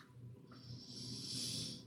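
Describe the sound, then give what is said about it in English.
A long, slow, calming breath pushed out for stress relief, a soft airy rush that swells and holds for nearly two seconds, with a faint low rumble underneath and no talking. “Wusa. Practicing your breathing. Letting it go.”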